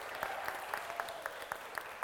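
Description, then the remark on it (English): A church audience applauds after the benediction, welcoming the musicians ahead of the postlude: a soft wash of many hands clapping with sharper claps landing in a steady, quick rhythm about four times a second. No voices are heard. “let's give them an applause ahead of time.”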